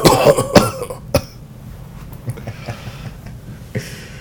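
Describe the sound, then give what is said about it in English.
A voice imitates General Grievous's raspy, exaggerated coughing fit: a cluster of harsh coughs in the first second, one more sharp hack, then quieter breathy rasps trailing off. “That's why he's always coughing all the time.”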